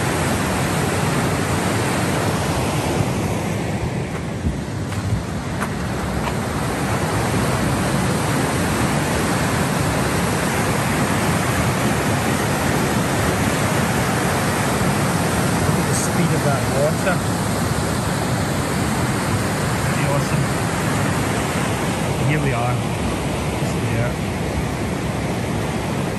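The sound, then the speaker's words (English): Fast-flowing river water at Tunnel Bridge roars steadily and loudly throughout, a dense, continuous rushing sound with no breaks or quieter moments. “The flow of water was so powerful.”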